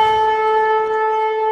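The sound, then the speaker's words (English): A loud trumpet blast, blown right next to someone's ear, holds one brassy, steady note for over a second without a break, harsh and piercing, with no voices. “Maybe he should spend less time filming the adverts and more time practicing that trumpet.”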